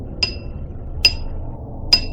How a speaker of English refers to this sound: The ping sound when the pebbles contacted the glass seemed louder in the stillness of the night.